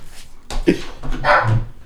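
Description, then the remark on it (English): A female dog barks a few times in short, sharp bursts, clear, with a brief whimpering edge between barks and no talking over it. “Your dog is barking.”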